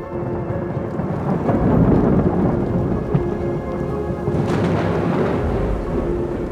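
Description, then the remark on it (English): Steady rain pours down over a small village in the Austro-Hungarian Empire with a low, rolling rumble of thunder building and swelling throughout, a loud, enveloping storm with no voices. “And in a small village in the Austro-Hungarian Empire, in the midst of a thunderstorm, a child is born who will join their ranks as one of the greatest inventors in history,”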